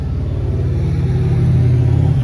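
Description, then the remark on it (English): A car engine revs up loudly, its deep droning rumble climbing steadily in pitch as the vehicle accelerates past along the road, with no voices over it. “there's gonna be cars whizzing by, and there's a motorcycle coming down the road now”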